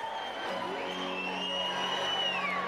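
A concert crowd cheers and claps steadily, with whoops and sustained shouting rising over a dense, loud wash of applause that holds at an even level throughout.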